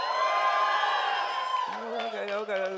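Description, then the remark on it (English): An audience at an 11 o'clock church service shouts and cheers loudly and steadily for a few seconds, many voices overlapping in a sustained roar, with one voice rising above the crowd near the end. “Or are you going to put some zeal in you and some pep in your shouts today?”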